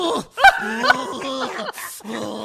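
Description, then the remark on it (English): A man's voice imitates a growl: a strained, rasping vocal snarl with harsh bursts and a drawn-out, moaning tone, fairly loud, with no other sounds around it. “Let me hear the growl again. What's the growl?”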